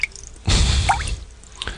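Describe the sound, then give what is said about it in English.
Wet dripping: one loud splashing drop with a bright, rising plink, followed by a fainter drip a moment later. No voices. “And you're like, oh, thanks for letting us off the hook after listening to dripping water and fucking canned laughter.”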